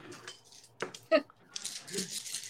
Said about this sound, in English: All right, go ahead and roll the dice. You're probably going to hit, no problem.